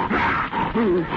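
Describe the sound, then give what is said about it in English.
A person imitates the MGM lion roar: one loud, rough, growling roar lasting about a second, its raspy tone wavering and swelling again near the end, with no other talk. “that's the MGM lion.”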